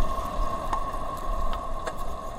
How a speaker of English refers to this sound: But we could hear the wind whistling over the top of the crab flute, this wind instrument that the crab has made.